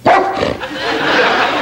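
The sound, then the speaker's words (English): A dog barks loudly, a sharp yelp at the start followed by a second bark and continued excited, noisy yapping. “You've got to be the smartest dog in the whole world.”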